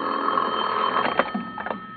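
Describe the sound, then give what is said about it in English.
A telephone bell rings steadily and fairly loudly for a couple of seconds in a bedroom, with a tinny, muffled quality and no voices over it. “I propped myself up in bed with a magazine and was almost asleep when my phone rang.”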